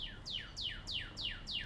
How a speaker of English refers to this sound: Oh, hello, beautiful bird. I can't talk to birds, but that is just beautiful.